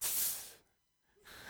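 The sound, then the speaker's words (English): A voice imitates an air freshener, mounted high on an office wall, spraying after its button is pressed: a loud, breathy hiss, a brief silence, then a second hiss starting up, with no other talking. “And I opened up the air freshener. And I hit the button to make it spray again.”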